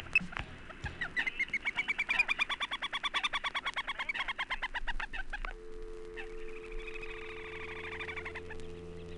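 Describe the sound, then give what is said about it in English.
A pair of little grebes trill in a rapid, high, pulsing chatter that rises and falls, while a moorhen calls faintly underneath; after a brief pause a softer trill resumes with a low steady hum. “smaller little grebe also likes gravel pits, and here are two trilling away with a moorhen in the background.”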